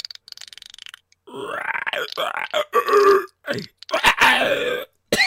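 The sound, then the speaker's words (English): A voice imitates the clicker zombie noise from a video game: a second of faint rapid throat clicks, then loud, strained, croaking groans and gurgles in uneven bursts, with brief pauses between them. “I realized you're trying to do a clicker noise.”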